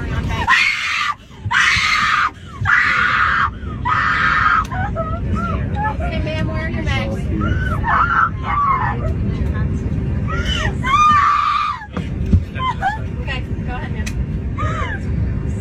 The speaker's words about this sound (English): Now, fellas, you know, if you don't want to cause a scene, don't break up with somebody on a plane. This is an isolated area. She screams, falls on the floor crying, and then screams some more.